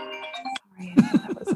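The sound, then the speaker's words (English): A mobile phone rings during an interview with a short, bright electronic ringtone melody that cuts off abruptly. After a brief silence, a person begins talking. “That wasn't your phone. There was somebody else's.”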